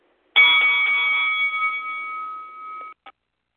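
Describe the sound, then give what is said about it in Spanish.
A bell rings once with a bright metallic strike, then its clear tone rings on and slowly fades over a few seconds before a short final tap. No voices are heard. “el sonido de la campana pa'lante.”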